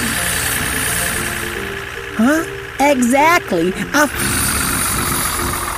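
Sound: rocket engine roaring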